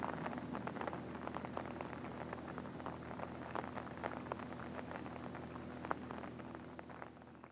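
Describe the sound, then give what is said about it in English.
Steady night rain falls without letup, a constant soft hiss crowded with tiny pattering drops and sharper ticks, under a faint low hum. No one speaks. “Now it'll rain the rest of the night.”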